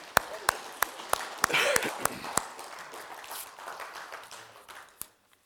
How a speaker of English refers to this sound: In Jesus' name, everybody said, amen. Amen. Let's just bless the Lord with the clap offering.